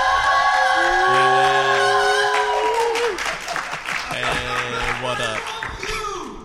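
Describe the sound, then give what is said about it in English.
The audience at PuckleCon 2018 cheers and applauds loudly and continuously, with whoops and shouting voices rising over dense clapping, the noise dipping slightly toward the end. “I guess they want to cheer, so I'm going to let them”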